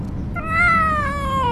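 A cat named Felix lets out one long, drawn-out mew that slowly falls in pitch, plaintive, from inside a cat carrier, over a steady low rumble of a car driving down the road.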